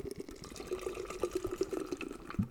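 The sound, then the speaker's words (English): Beer pours steadily into a glass, a continuous gurgling splash with bubbly fizzing that rises in pitch as it fills, with no voices over it. “So, I'm going to pour this thing.”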